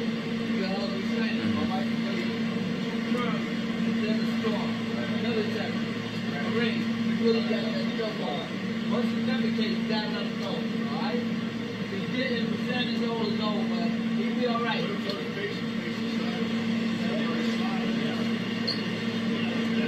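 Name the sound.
inside a moving bus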